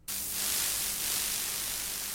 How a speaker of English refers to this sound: Static, electrical static is what that is. This is exactly what my brain does at night.